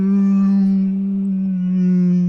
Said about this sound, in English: Sky whale. The whale god. The whale.